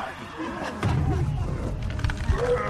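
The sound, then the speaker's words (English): A person growls and roars in imitation of a wolf, a loud, rough, sustained vocal snarl lasting a couple of seconds. “Alright, so he's going to turn into the wolf. Well, not the wolf. I'm playing wolf.”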